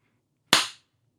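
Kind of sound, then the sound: human body sound, hand clap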